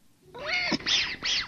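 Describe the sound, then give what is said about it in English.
A grey female kitten, grappling over a mouse toy, meows three times in quick succession, fairly loud: a longer, wavering first cry followed by two shorter, rising-and-falling mews, with no other sounds. “You tug at the toy, but the kitten wraps herself around it and tries to pull it back.”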